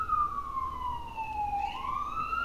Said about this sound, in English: Is that Siren? Is that me? Or is that coming from one of you? No, that's me.